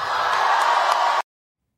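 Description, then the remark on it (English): A MAGA-friendly crowd in Pittsburgh cheers in the evening at a political rally for Pennsylvania Republican gubernatorial candidate Doug Mastriano, in a dense, steady roar of many voices, loud and unbroken for just over a second before it cuts off abruptly into silence. “Lines like that from Pennsylvania Republican gubernatorial candidate Doug Mastriano elicited plenty of cheers with a MAGA-friendly crowd in Pittsburgh this evening”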